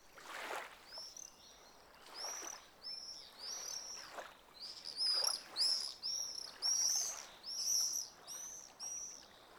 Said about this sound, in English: The melodic songs of warblers and sparrows add to the ambience.